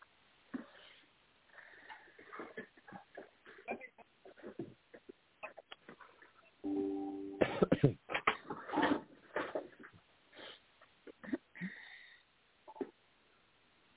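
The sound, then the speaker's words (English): A single drawn-out, voiced yawn from a tired speaker about halfway through, fairly loud, surrounded by soft rustling, clicks and quiet mumbled vocal sounds. “Oh, that was yawn.”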